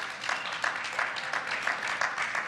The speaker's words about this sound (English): We have a studio audience. You guys want to clap and say hello to our online viewers?